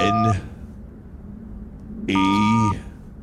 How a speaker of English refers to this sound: All right, I'm going to take out this phone here. Dial us up.